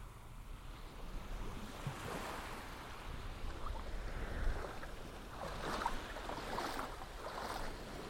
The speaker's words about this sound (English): You stand up and walk to the water's edge and stroll along in the lapping waves slowly as you go down the beach.